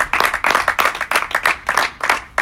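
A round of applause from a group: dense, crackling hand claps that swell and dip in quick pulses, fairly loud and steady throughout, with no voices over it.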